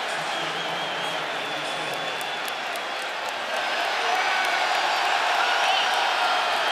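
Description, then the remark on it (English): A large arena crowd at a basketball game cheers as an injured player goes down, a dense, continuous roar that fills the space, swelling noticeably louder about halfway through and staying loud to the end. “They don't like to hear the fans cheering.”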